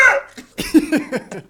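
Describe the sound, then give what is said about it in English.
A person's voice imitates a seagull call: a sharp, high cry followed by a quick run of about five short, yelping notes, each dipping in pitch, fairly loud. “What's the seagull sound like”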